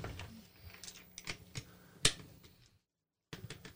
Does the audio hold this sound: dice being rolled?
yes